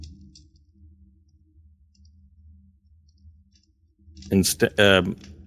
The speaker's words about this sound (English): with his totem sort of clicking and clacking, they're wooden.